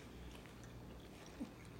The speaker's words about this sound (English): Chewing break. Both eating.